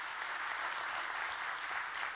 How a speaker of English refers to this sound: Every Sunday, we have people all over the area that tune in online and watch us. So let's give them a great big hand clap this morning. Welcome them.